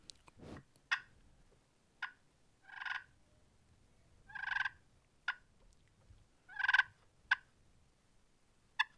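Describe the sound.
A turkey's soft clucks and purrs: short sharp clucks mixed with rolling purr notes, spaced irregularly over a quiet background with no talking.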